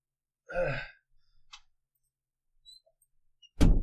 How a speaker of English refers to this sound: What? Really? Closed door.